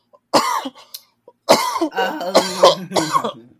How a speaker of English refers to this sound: You haven't gotten that from me in a while. Coughing fit.